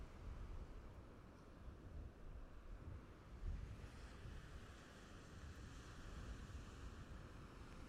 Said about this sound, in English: And it also gave you the opportunity just to listen to the waves, if that was enjoyable.